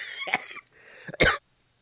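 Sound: coughing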